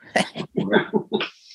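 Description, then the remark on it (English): A dog whimpers in a quick run of four or five short, whiny, broken vocalizations, fairly loud, with brief gaps between them and no talking. “I got my dog Abbott here.”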